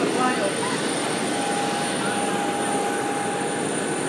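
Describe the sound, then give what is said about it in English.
A steady, loud jet engine roar fills the air on an airport tarmac as passengers board an aircraft, a broad rushing drone with a thin high whine running through it, constant throughout. “I'm on the tarmac.”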